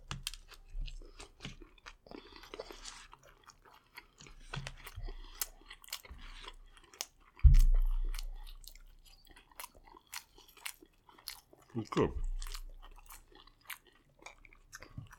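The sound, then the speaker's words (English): Crunchy bites and steady chewing on fried chicken that is hard to bite into, with sharp crackling transients throughout and a couple of louder, heavier bites. A voice briefly says a word. “The chicken is kind of hard to bite into.”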